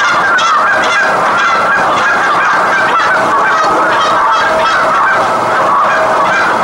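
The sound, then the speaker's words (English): A dense, continuous spring chorus of many Canada geese honking, overlapping calls merging into a loud, steady clamor that ebbs and flows, with no pauses and no voices speaking. “It's a constant cacophony of sound that goes on in the spring. You hear the merging of many different voices.”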